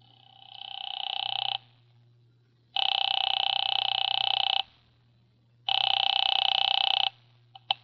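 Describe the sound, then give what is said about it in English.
A telephone rings on the line after Nero Wolfe dials Halsbrecker's Market: three long, bright electronic ring bursts separated by short silences, ending in a couple of faint clicks, with a steady low hum underneath. “He had just dialed a phone number and, with his eyes closed, was leaning back in his specially built chair, which was big enough for two, but not two of him.”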